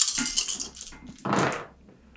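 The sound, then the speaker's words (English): A big pool of dice is rolled in a tabletop role-playing game, clattering and rattling across a hard surface in a quick burst of bright clicks, then a louder jumble of tumbling before settling and trailing off into quiet. “These are big dice pools, but these are shit rolls.”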